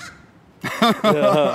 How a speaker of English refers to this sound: What are you noticing out here? No cops. And a crow.